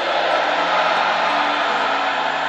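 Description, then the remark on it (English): A church audience screams and shouts "amen" together in one loud, sustained roar of many voices that holds steady for a couple of seconds without any single voice standing out. “In the mighty name of Jesus, I want to hear somebody scream, amen.”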